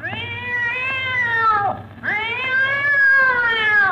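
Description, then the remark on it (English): A cat lets out two long, loud yowls after its tail is stepped on in an Abbott and Costello radio comedy scene, the first sliding down in pitch before a brief break, then a second drawn-out wail, over a faint low hum with no talking. “I told you not to step on that cat's tail.”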